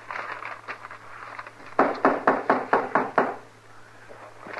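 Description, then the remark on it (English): Someone raps on an unlocked door about seven times in a quick, even, firm series, after a few faint taps, with a low steady hum in the background. “Like a body could open the door for theirself.”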